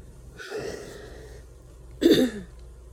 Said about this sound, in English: and sorry y'all, my nose is like currently stopped up, so you might hear some sniffling.